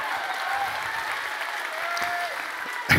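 A room full of people claps steadily for the speaker's mother, a dense, sustained patter of applause at moderate loudness that holds evenly for a few seconds without pausing.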